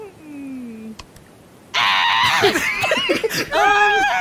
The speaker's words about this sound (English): Sorry, I had to scream. It's just a thing. Don't worry about it.